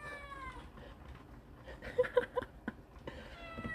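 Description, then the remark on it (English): A cat meows repeatedly, a run of drawn-out, wavering cries with short sharp chirps in the middle, fairly clear. “like, what are you meowing about?”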